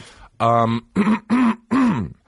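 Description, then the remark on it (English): Four throaty, voiced hawking bursts in quick succession, each a rough, fairly loud grunt-like clearing of the throat with short pauses between them. “there's going to be a lot of hawking and coughing and snorting and shit this episode.”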